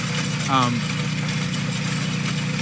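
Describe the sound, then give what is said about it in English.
A well-drilling machine's engine runs in a steady, low, throbbing drone as it tries to drill a well, holding constant throughout, with a brief voice rising over it early on. “That's the actual machine. That's actually trying to drill the well.”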